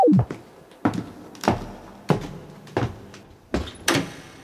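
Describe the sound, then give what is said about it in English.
A small door is opened with a run of about six sharp wooden clunks and knocks, fairly loud, spaced unevenly over a few seconds with no voices. “Oh my, how strange! Open that little door,”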